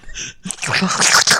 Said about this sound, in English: I just spit the gum out. Didn't do anything weird. It sounded weird.